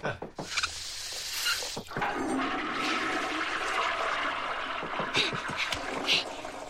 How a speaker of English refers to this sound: The fixtures, they're all draining clockwise, sir.